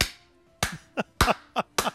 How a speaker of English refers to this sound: Just a standalone slow clap building to a feverish pitch